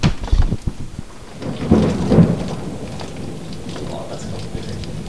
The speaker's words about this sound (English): In a room that we've proven isn't echoey, when it's pissing rain right outside the window. Yeah, a meter away from this microphone.